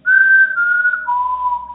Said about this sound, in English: So I drove over there, and I got out, kind of looked around, and then I hear the whistling again.